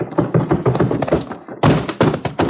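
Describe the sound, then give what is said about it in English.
Busy clattering and scuffling, then a brief pause and several loud thuds as a man is thrown by the bouncer through swinging saloon doors and lands heavily on the ground. “someone was heaved right through the doors of that saloon by the bouncer.”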